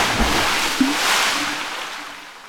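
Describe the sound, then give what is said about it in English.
A microphone plunges into water with a sharp splash, followed by a wash of gurgling, sloshing noise that slowly fades. Fairly loud, with no voices. “I don't suppose you have one of those water-resistant varieties of cell phones, do you? My microphone! Coming in hot!”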